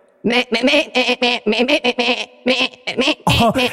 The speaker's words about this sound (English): Our next contestant is Silky. She's a pygmy goat from the mountainous regions of Carthos.